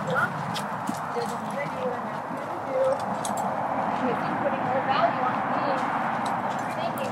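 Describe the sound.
A horse being handled on a lead shifts about, pulling on its handler and moving its hindquarters toward other horses, hooves clip-clopping in an irregular rhythm over a steady wash of outdoor noise, with indistinct voices in the background.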